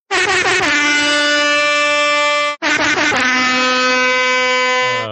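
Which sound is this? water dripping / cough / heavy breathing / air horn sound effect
air horn sound effect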